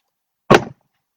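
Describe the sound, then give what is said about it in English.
A single door slams shut with a sharp, heavy bang that dies away quickly, loud, with silence before and after and no voices. “The sound of a slamming door snapped his head away from Miss Worthington's.”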